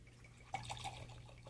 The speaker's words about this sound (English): Now, the fountain has two spigots and a green fairy on the top. You pour in your serving of absinthe.